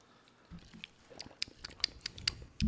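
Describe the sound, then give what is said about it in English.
Someone takes a second sip of a sweet cocktail made with simple syrup, with soft wet mouth clicks and a few small glassy ticks, ending in a low thump as the glass is set down. “Let me take a second sip.”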